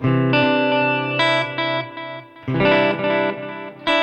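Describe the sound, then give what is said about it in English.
Electric guitar chords ring out through a vintage digital delay, the repeats carrying a slight chorused shimmer. The playing is loud with no talking, and the phrases swell and trail off. “A vintage digital delay.”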